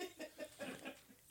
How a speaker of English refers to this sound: That was the chicken. What? Things going crazy. I don't know. There's a chicken flew by the window.